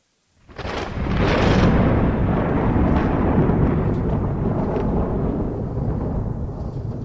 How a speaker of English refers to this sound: Love that thunder.